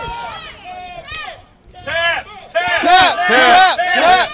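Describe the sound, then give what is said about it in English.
A large crowd at a wrestling match chants "Tap" in unison. The voices swell from a scattered start into loud, rhythmic shouts, urging a wrestler locked in a figure-four hold to tap out. “This crowd wants some tap.”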